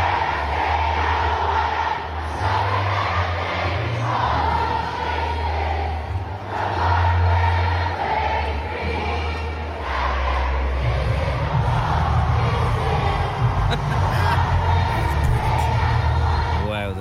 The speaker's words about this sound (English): This is what it sounds like when that many people sing your song.